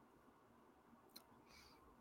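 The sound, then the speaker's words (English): A single crisp computer mouse click stands out against a quiet background hum, followed moments later by a soft brief rustle. No one speaks. “I keep doing that, clicking the”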